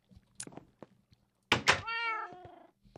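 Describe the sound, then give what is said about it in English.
A single drawn-out meow of a cat in the video game Minecraft, with a clear rising-then-falling tone, preceded by a couple of soft knocks and clicks; fairly loud, with no talking. “He's got a kitty cat over here.”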